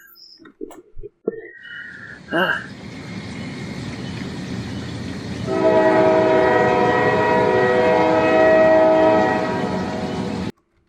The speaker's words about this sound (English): So, yeah, I think I hear a whistle blowing coming down the tracks.